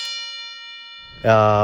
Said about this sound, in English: I'm going to have to play the bell.